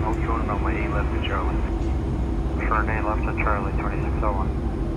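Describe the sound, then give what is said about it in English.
An airliner from Bogota, Colombia, ending a 2,500-kilometer journey, drones steadily and loudly on approach to runway 36 right as its landing gear is released from the wheel well; a constant low rumble fills the whole stretch while a man talks over it in two bursts. “Inside the cabin, the captain and his co-pilot complete their final checks. The landing gear is released from the wheel well.”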